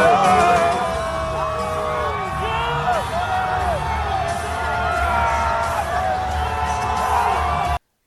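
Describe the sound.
A large crowd cheers wildly as Donald Trump enters the building at a Saturday night event, a loud, continuous roar thick with whoops, yells and shouting voices that holds steady for about eight seconds before cutting off abruptly.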